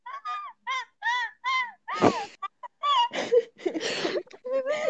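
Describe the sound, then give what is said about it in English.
A person imitates a friend's seagull-like laugh with a string of sharp, squawking cries in quick succession, fairly loud, breaking into noisier, breathy laughter toward the end. “I want to do … seagull laugh.”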